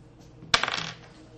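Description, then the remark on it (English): A ten-sided die, rolled during a tabletop game, clatters onto a hard table with one sharp hit, then rattles and tumbles briefly before settling. Fairly loud, with no voices. “So he rolls. Actually, that's a 10-sided dice.”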